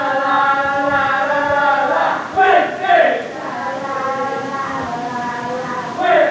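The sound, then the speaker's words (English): A rowdy group of drunken people sings late at night, a drawn-out chanting na-na-na melody together, broken by two louder bursts of shouting partway through before the tuneless singing carries on. “They're shouting something after the na-na-nas.”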